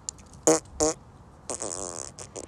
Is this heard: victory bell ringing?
no